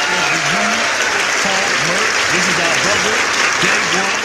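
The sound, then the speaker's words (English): Steady, loud audience applause for a guest fills the whole stretch, a dense wash of clapping with a voice speaking faintly underneath it. “Let's give him a round of applause, man.”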